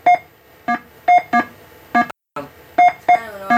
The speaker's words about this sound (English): Well, the sounds are pretty primitive. You just got that little beep, that's about it. But again, just remember, in 1977, it blew people's minds.